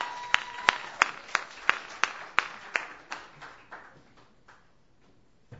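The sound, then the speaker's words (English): Audience applause for a woman: a steady run of sharp, evenly spaced claps, loud at first and then thinning and fading over about five seconds, with no talking. “Again, another hand,”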